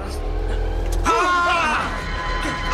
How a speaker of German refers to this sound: Der rammt meinen Wagen. Oh, verrückt geworden? Halt das Steuer gerade, Zweiter. Bleib cool, Mann.